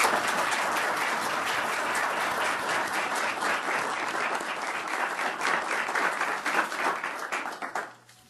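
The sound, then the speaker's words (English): A crowd applauds a benefactress who is present as a guest, a dense wash of many hands clapping at a fairly loud, even level for about seven seconds before quickly dying away. “In fact, we're pleased she's joining us today with her guests, and perhaps you would join me in a round of applause for our benefactress.”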